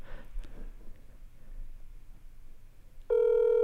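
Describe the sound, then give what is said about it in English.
Phone line ringing on an outgoing cold call to a player on the Caress of Steel hockey team: after a few seconds of quiet background hiss, a loud, steady ringback tone abruptly begins near the end and holds. No one speaks. “Okay, phone's ringing.”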